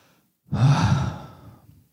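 A single deep, breathy exhale, like many people in a church sighing out together, swells in suddenly, holds for about a second, then fades away. No one speaks.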